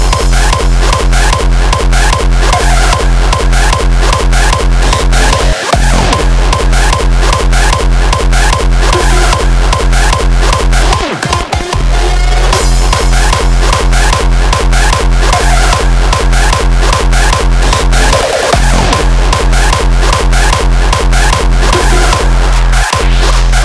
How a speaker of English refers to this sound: Let's stomp the fucking floor.